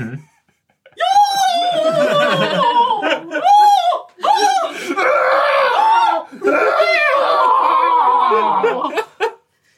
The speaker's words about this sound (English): I'm going to scream. That's how I shall play this.